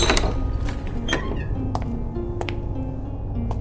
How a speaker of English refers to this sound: After going down a series of crumbling staircases, I come to a small wooden door. Above the door is a blinking neon sign depicting a giant squid fighting a sperm whale. The sign reads, "The Salty Squid." I push the door open and enter the pub.